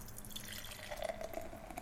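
A just-opened Slow Brew craft beer, hopped with Citra and Amarillo and brewed on the Central California coast, pouring into a glass: a steady liquid trickle with small splashy drips and fizzing, moderately quiet, with no talking.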